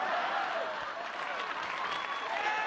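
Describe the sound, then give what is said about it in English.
A crowd applauds on seeing a man arrive, a dense wash of clapping at an even, fairly loud level, with faint cheering voices threaded through it. “That's why the crowd starts applauding in addition to seeing him.”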